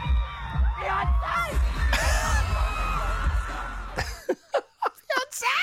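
At a concert, a man shouts toward the performer above a loud, roaring stadium crowd full of cheers and screams, then the crowd noise cuts out, leaving a few short, isolated vocal bursts.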